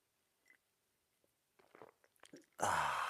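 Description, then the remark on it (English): Soft slurping sips of a drink, a few wet bursts in quick succession, then a loud, breathy, voiced sigh of satisfaction. “And join me now for the unparalleled pleasure, the dopamine hit of the day, the turbo simultaneous sip, which comes with a button press for some of you.”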